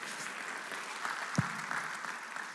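A crowd applauds steadily, a dense wash of many hands clapping at even volume throughout, with one brief low thump partway through.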